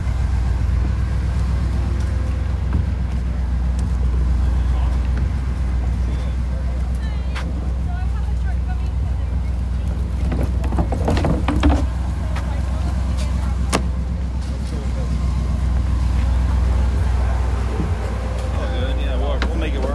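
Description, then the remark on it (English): A truck engine idles steadily, its deep, continuous rumble filling the whole stretch, with occasional faint clicks and rattles over the low drone. “I just love that you got that truck still, man.”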